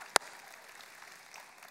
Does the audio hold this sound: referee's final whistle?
no